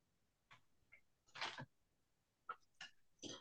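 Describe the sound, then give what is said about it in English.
Tarot cards being shuffled: a series of short, papery riffles and snaps in uneven bursts, with one longer flurry in the middle and quiet gaps between, and no talking. “So when I was shuffling, one of the first cards that came out was the Nine of Swords in reverse”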